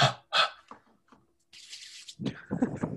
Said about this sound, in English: I got in my hand right here my handy dandy air hammer. Bring it out.